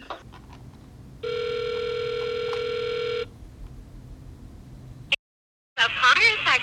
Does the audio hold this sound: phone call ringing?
yes